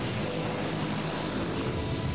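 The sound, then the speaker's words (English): A steady airplane engine drones without a break, a dense, even roar with a low rumble, fairly loud, with no voices over it. “Like, so he's in a plane right now.”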